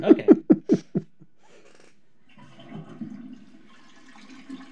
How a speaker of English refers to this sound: Flush me down the toilet.